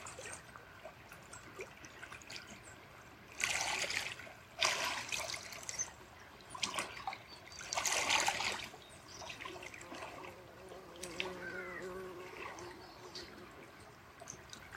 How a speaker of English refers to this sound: And the sounds of the water, that's movement.